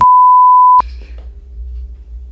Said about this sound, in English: You're gonna have a lot of beeping work to do.